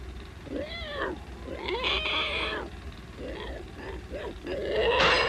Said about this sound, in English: Yeah, then you hear some pig noises.